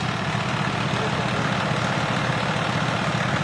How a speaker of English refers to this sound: Now here comes the tow truck. This should be interesting.